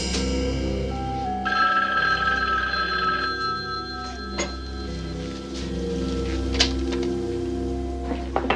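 A telephone rings steadily for several seconds, its bell tones repeating at a moderate level over a faint hiss of background noise, with no one speaking.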